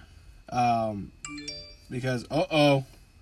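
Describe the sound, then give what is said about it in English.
A mobile phone rings with a short electronic chime, a brief tonal burst of a few stacked notes lasting under half a second, sitting between stretches of a man talking. “My phone just went off.”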